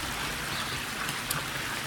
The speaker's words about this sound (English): just next to it, on one of the exterior walls of the laundry, is a large fountain. Well, it's another kind of rectangular basin, but this time much bigger, and it's got actually 12 pipes pouring water into it.